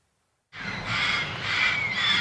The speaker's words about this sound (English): You can hear the place before you ever see it. In a lonely corner of Los Angeles is a home for dozens of parrots, many of them neglected, abandoned, abused.